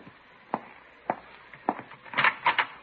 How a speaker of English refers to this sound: Here he comes across the street. Well, great. I'll open the door for him.